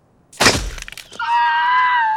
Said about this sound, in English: But this sound design should have gotten an Oscar just for that crotch shot sound effect. That is a wet crackle crunch